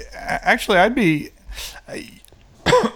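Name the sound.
coughing and throat clearing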